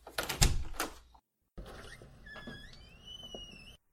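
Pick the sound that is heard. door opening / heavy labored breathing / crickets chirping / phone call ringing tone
door opening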